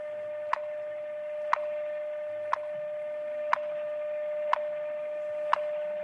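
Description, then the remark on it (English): Sharp, evenly spaced ticks sound exactly once per second, six in a row, over a steady, thin electronic hum, from a telephone time signal number in Denver, Colorado. No one speaks. “Every one of these ticks is a second.”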